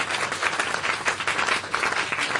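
A steady burst of audience applause, many hands clapping densely and evenly with no pauses, fairly loud throughout.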